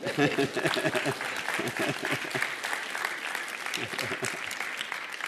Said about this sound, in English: Anybody going to clap for me this morning?